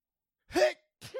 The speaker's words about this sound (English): Because I sneezed.